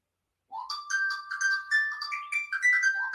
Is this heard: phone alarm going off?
yes